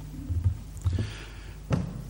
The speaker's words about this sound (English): I'm always worried about walking across that bit of ground in front of me. It seems to creak every time I go across it. I think it has something against me.